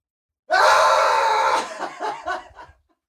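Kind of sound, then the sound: human body sound, person screaming loudly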